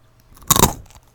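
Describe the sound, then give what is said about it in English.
A single sharp, crackly crunch of someone biting into a firm pretzel, a brief burst of brittle snapping that quickly fades, with no voices over it. “Everybody's crunching on the bite.”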